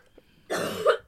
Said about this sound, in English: I should have probably hit mute on my end too here because it's just a distant cough.